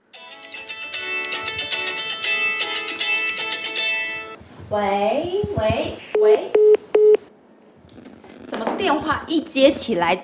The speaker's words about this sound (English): You pick up the phone and immediately the caller hangs up like this one.